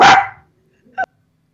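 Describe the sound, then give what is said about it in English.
A dog named Tiger barks twice: a loud, harsh first bark, then after a brief silence a shorter, quieter second bark. No one speaks. “Did you just mute yourself because of Tiger?”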